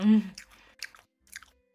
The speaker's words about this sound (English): I'm trying to chew harder, but I don't know if this is ASMR, honestly.